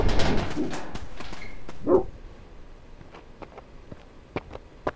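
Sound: dogs barking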